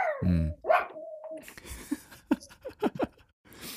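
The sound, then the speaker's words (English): In a house full of dogs, a dog lets out a loud, deep bark, followed by a higher yelp and a drawn-out whine, then a scatter of shorter, quieter yips and snuffles. “I've got a house full of dogs.”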